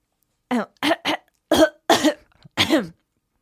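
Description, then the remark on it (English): A burst of coughing right into the microphone, about five or six loud, harsh coughs in quick irregular succession, with no talking. “Not seriously enough not to cough onto the mic.”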